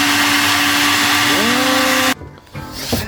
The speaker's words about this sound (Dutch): Ja, nou vanuit café De Flamingo, de blender. Yes! Ja, het ziet er een beetje pina colada-achtig uit.